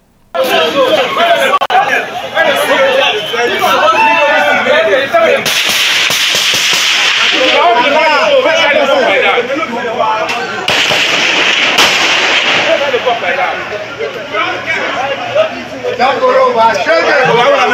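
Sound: gunshots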